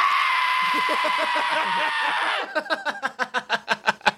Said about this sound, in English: I'm looking up eagle samples because I want to find a cool scraw-type dealio. Mm-hmm. A fucking eagle sounds like a stupid dog.